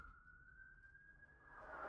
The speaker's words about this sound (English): I was gonna say, what is happening over there? I'm tired of sirens.